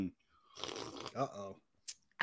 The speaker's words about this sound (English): I'm going to take a big old gulp.